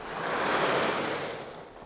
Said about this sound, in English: I'm one of the architects working on the project, and what we can hear at the moment is pouring concrete for some of the new foundations in what will become an extension of the Polytechnic facility.